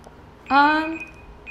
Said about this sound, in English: That's the timer saying we're doing this stuff, but keep going.